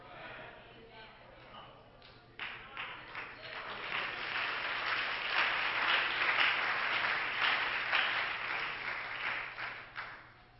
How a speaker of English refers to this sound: Thanks for the clap. It was half-hearted, but thank you anyway.